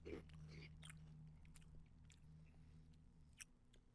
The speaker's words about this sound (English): You put this in your mouth, you chew it once, and it disintegrates. Gone. Vanishes.